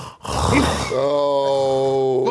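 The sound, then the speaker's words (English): A person imitates heavy breathing: a loud, rough breathy rush followed by a long voiced, groaning exhale that holds steady to the end. “Why is you going to be breathing like that, though, bruv?”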